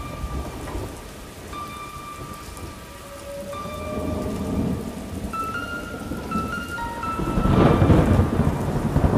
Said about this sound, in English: The rain would often keep Isabelle awake at night. She laid perfectly still, tucked safely beneath the blankets of her bed, and listened.